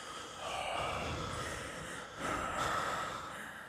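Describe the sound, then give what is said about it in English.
Heavy, raspy breathing through a mask at the end of the movie Halloween: two long, drawn-out breaths, one after the other, fairly loud, with no talking. “And then the movie ends with heavy breathing.”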